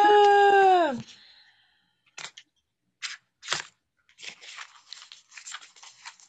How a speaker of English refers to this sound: So, for this week, the vibe of the week for me is coming from my lovely Wild Offerings Oracle. Ooh, pretty. And let's see what they have for us on this side. Well, shuffle, shuffle, shuffle, get those cards going.